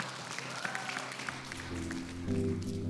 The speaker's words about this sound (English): Give God a hand clap of praise, church.